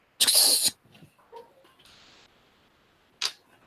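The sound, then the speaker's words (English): An exaggerated phone camera shutter effect from a phone left on its default settings while taking a picture: a loud, harsh burst of noise, then faint clicks and a brief hiss, ending with a second short, sharp burst. No one speaks. “Why does it not surprise me that Ned has a phone that has like that overblown shutter sound?”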